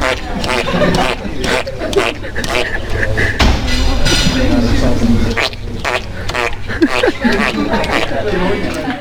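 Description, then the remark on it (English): A horse blows repeated sputtering raspberries, loud, rough lip-flapping bursts coming in an uneven series, with a busy murmur of crowd chatter underneath throughout. “That, believe it or not, is a horse giving a Bronx cheer repeatedly.”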